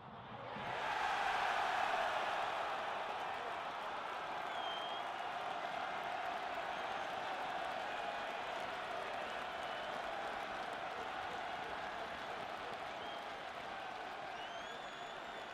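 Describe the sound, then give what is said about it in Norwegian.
A huge stadium crowd cheers and roars in a sustained, dense wall of noise that swells quickly at the start and holds steady throughout, with whistles and shouts poking through. “Jubelbrølet og gleden fosser gjennom kroppen hans.”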